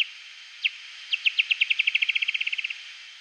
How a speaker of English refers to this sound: Now the bat is getting details, size, shape, distance. The bat ramps up the speed of the call even more until you get what's called a feeding buzz. Because those calls are so close together that it just sort of turns into this buzzy sound.